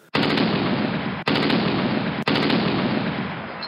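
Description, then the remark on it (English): Loud, sustained bursts of rapid gunfire, like machine-gun rounds striking a fighter pilot's airplane during a war, come in three long, dense volleys separated by brief gaps, with no voices. “One time his airplane was shot and he had to eject out of the seat and parachute down to the ground.”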